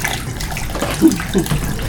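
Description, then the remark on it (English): Freshly mixed photographic fixer being poured out of a developing tank while developing on the floor of an office: a steady splashing gush that runs the whole time, swelling briefly midway, with no voices. “Start pouring out now because I just mixed up fixer this morning as well.”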